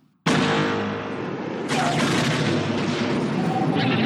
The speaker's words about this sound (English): I've repeated that experience over and over again over the years, always in a quest which I call the search for the ultimate explosion.